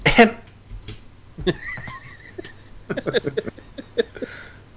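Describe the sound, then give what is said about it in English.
A weak, throaty hem of throat clearing: a short rough burst, then a brief hummed tone and a run of quick choppy guttural sounds at moderate volume. “Now it's a throat clearing.”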